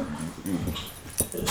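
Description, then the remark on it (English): A dog whimpers and whines in short, uneven bursts, moderately loud, with brief rustly noises mixed in and no one speaking. “I think that's the dogs telling us they want some attention.”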